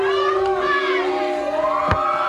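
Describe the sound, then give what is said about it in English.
A loud wrestling crowd booing and cheering for Ric Flair, a dense, steady roar of many voices with wavering pitch, broken by one sharp crack near the end. “Boos, cheers, Ric, some like you, some hate you.”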